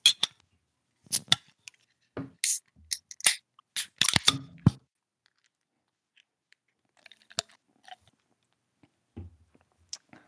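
Beer bottles are opened with a quick run of sharp pops and hissing bursts, followed by pouring sounds and then a few scattered, quieter clinks and clicks. No one speaks.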